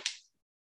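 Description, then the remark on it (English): A flimsy little plastic water bottle, the kind handed out during a race, gets crushed in one quick, bright crackling crunch that fades within a fraction of a second, with no voices around it. “These little plastic water bottles here that they hand you during the race.”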